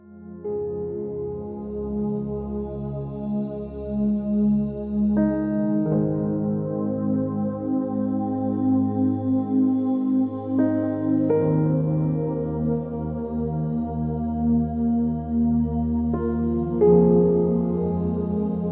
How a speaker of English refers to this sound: Okay, that's it. I'm gonna close the lid and I am going to blend it away.